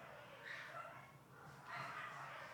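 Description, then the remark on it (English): Faint, muffled dogs scuffling and snarling in a basement, coming in two short rough bursts about a second apart with a low rumbling background between them. “We got a dog fight in the basement.”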